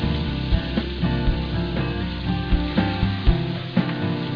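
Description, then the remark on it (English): Steady sizzling of butter melting into hot olive oil in a frying pan on high heat, with occasional soft knocks and scrapes as if utensils touch the pan. No one speaks. “Once it's hot, pour a liberal amount of olive oil into the pan. Then add about 1/3 of the amount of butter into the frying pan.”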